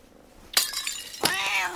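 animal, cat yowling

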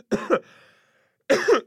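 human body sound, cough

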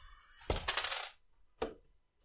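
household object, six-sided dice being rolled

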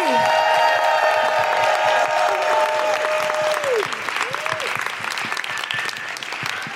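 crowd, audience applause and cheering

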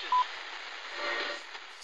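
household object, mobile phone going off

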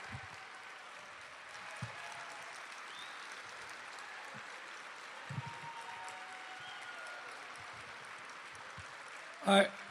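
crowd, audience applauding and cheering

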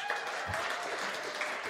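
crowd, audience clapping

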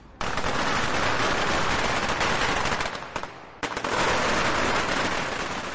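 sound effect, firecrackers exploding

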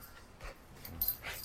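animal, dog whimpering

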